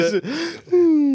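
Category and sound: vocal imitation, voice imitating snoring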